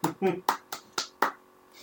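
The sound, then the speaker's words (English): A quick, steady run of about six hand claps, evenly spaced and fairly loud, each one a sharp smack. A faint sound lingers briefly after the last clap. “I start clapping.”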